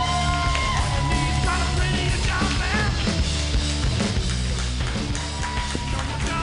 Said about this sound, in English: You guys are going to laugh hysterically at her jokes. Clap wildly right now, you guys